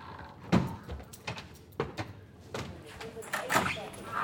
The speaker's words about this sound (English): At the moment, I'm in the kind of the outer office, but I'm just walking through the first door to the hotline now.